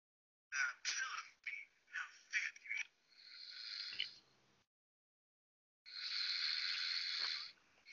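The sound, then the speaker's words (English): Heavy breathing right up against the microphone: a cluster of short, ragged puffs, then a long rushing breath, a brief silence, and another long, loud breath. “Your buddy's just breathing.”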